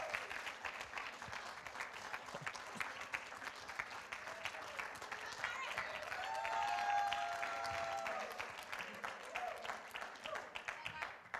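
Sustained applause from a church audience in the morning, honoring a woman as she comes up: steady dense clapping that swells slightly in the middle, with a few faint voices and a brief whistle-like tone mixed in.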